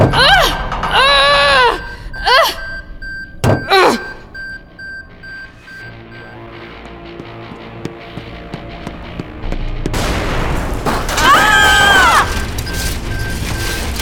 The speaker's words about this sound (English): That sounded like... an explosion! More like a fireball.